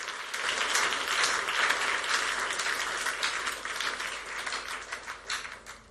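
A crowd applauds steadily for several seconds, clapping for deliverance by the mercies of God, a dense, sustained wash of many hands clapping together, fading slightly toward the end.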